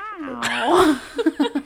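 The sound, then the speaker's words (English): A person voices a drawn-out, cat-like meow, sliding in pitch, fairly loud, followed by a few short choppy vocal bursts. “The title is actually Meow.”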